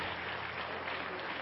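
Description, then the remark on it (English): An audience applauds its guests, a steady, dense wash of many hands clapping at an even level for the whole stretch, with no pauses or voices standing out. “Why don't we give our guest a hand clap today?”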